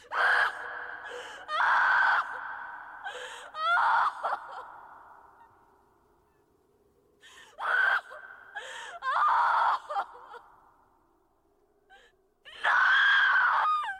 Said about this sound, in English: The last shot is Melanie Lynskey covered in blood screaming.